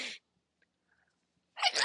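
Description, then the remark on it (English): After a short stretch of silence, one loud sneeze bursts out sharply near the end, with no talking around it. “I gotta sneeze.”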